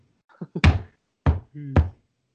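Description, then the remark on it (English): A few soft taps lead into three heavy knocks on a ceiling, spaced irregularly. The blows are loud and resonant, with short booming decays and no talking. “Knock three times if the Colts are losing.”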